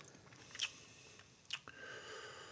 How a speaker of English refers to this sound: taking a sip. That's him appreciating his sip. Swishing it, chewing it. Contemplating it, slapping it, flipping it, rubbing it down.